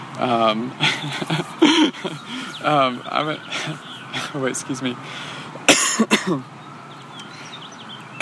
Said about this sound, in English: Get it out. No, it's funny. It's like, of course, I'm going to cough. Like, the first time today, I'm going to cough when we're starting the podcast.